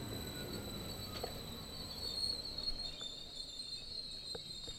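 A green Vy commuter train, line 12 to Eidsvoll, braking at the platform on track 2, with a steady high-pitched wheel squeal ringing over low rumbling, a few sharp clanks near the end as it stops and its doors open. No one speaks.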